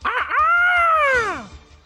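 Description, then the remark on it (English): A person's voice imitates a dodo bird call: a quick yelping lead-in, then one long, loud, tonal whoop that holds steady before sliding down in pitch and fading out. “I sound like the dodo bird.”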